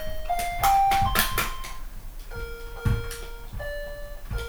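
A phone rings with an electronic ringtone, a short melody of sustained tones stepping between pitches and repeating, accompanied by a few sharp clicks and knocks.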